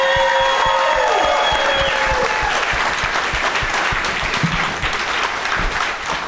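Sustained audience applause, a dense, steady wash of many hands clapping that holds strong for several seconds, with a few higher whoops or cheers riding over it at the start.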